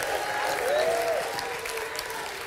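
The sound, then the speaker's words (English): An audience claps hands in praise to the Lord in a dense, continuous burst of applause, steady and fairly loud throughout, with a faint rising tonal whistle or cheer briefly heard above the clapping. “Come on, take 30 seconds and clap your hands unto the Lord.”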